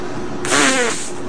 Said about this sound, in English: And now she's farting on a cake.